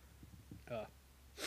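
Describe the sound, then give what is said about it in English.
A single sneeze: a few quick breaths, a voiced, gasping intake, then a short sharp burst of sound to finish. “I got a sneeze coming in.”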